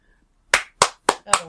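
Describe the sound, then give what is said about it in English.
Four crisp hand claps in a steady, evenly spaced rhythm, each sharp and loud with a quick decay, heard on their own without any talking. “You know, hard to clap on the back.”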